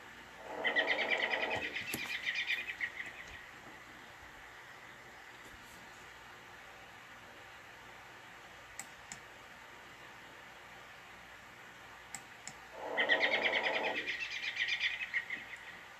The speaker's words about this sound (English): That's the American robin you're hearing right now.